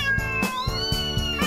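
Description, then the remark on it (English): A drawn-out cat meow rises over a steady, upbeat musical backing of a novelty song about a cat lady, with punchy drum hits landing every quarter second or so; the meow is clear and prominent in the mix. “Meow, meow, meow, the cat lady.”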